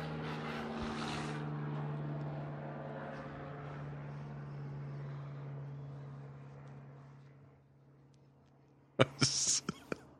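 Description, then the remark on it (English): A helicopter drones overhead with a steady, throbbing low hum that slowly fades, followed by a brief burst of sharp noise right at the end. “I thought you stopped because of the plane or the helicopter.”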